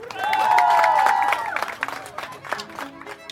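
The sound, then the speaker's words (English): An audience bursts into a loud round of applause mixed with whoops and cheers, then thins out into scattered, fading claps after a second or two. “You get a big round of applause”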